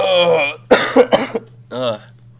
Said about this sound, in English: Excuse my cough.